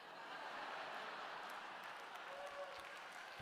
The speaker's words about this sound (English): Oh. Now, you applauded, which I didn't expect.